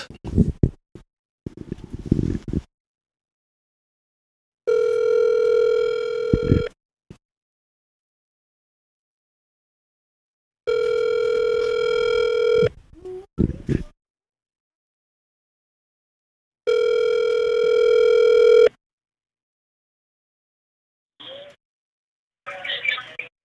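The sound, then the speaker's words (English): A mobile phone ringback tone for an outgoing call sounds three times, each steady two-second burst separated by several seconds of silence, with brief rustling and handling noises before and between the rings. “I'll call him.”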